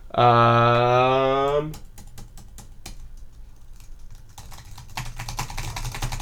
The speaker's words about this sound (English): I hear you typing. Let me just look it up real quick.